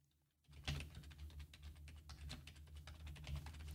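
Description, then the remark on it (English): Steady, rapid typing on a computer keyboard, a continuous stream of crisp key clicks over a low hum, starting after a brief quiet moment and continuing throughout. “So I don't have to keep typing it over and over.”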